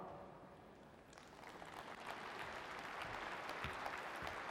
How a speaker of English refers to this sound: Yes. Clap if you want.